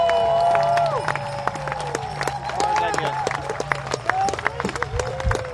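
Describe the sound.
A crowd applauds with a steady, dense patter of clapping that lasts throughout, mixed with cheering voices and rising whoops over a low, continuous murmur.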